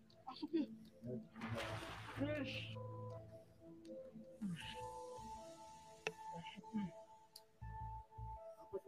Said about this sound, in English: What looks like a pale hand with long webbed fingers quickly splashes out of the water and snatches at a plastic ball floating on the surface.